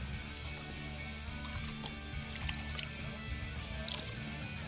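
Liquid is poured into glasses, with soft trickling, a few light clinks and drips over a steady low background hum. No one speaks.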